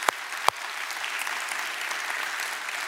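An audience at a church service claps steadily for two people who shared their life-change stories. It is a dense wash of many hands that stays even throughout, with two sharper, louder claps standing out near the start.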